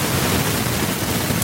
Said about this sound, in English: There's a huge white noise at the moment. Yeah, you've got a kind of crackly noise coming now, which you didn't have previously.